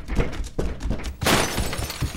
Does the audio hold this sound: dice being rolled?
no